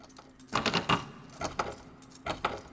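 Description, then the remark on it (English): A locked door knob rattles as it's turned by swiping right on a screen, giving three short bursts of metallic clicking and jiggling, with brief pauses between them and no talking. “And I'm turning the knob and manipulating this object and nothing's happening.”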